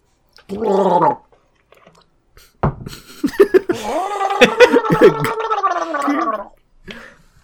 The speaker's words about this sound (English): Listen to me gargle.